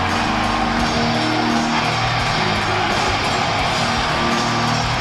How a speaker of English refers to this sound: He's back! Triple H is back! And folks, business has picked up. The game is back in business, and this sold-out crowd in Madison Square Garden just can't get enough of it.